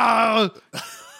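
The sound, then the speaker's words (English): A loud, sustained shouted battle cry for the game character Doran, who sprints across a forest floor raising his axe above his head: one strained voice holding a harsh yell that drops in pitch, breaks off, then trails into a rougher, breathy second burst. “Doran sprints across the forest floor and raises his axe above his head, screaming with the battle cry.”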